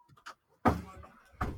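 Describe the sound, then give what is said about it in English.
A door swings shut with a solid thump that rings briefly, followed moments later by a second muffled knock as it settles, with faint background rustling before. “Hang on, I just got to close the door because this is driving me the noise.”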